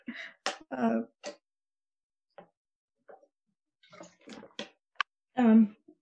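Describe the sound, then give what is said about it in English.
Someone sips and swallows water: a few short wet gulps and mouth clicks separated by quiet pauses, ending with a throaty exhale. “I need a drink of water, sorry. I'm getting dry mouth.”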